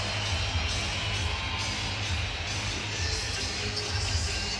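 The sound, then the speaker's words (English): A large hockey arena crowd roars steadily, a dense, sustained wall of cheering and shouting that stays loud throughout with no pauses or distinct voices standing out, as a player who landed an uppercut takes his helmet off and heads to the penalty box. “There's quite a roar from the crowd as Lagesson takes his helmet off and makes his way over to the penalty box.”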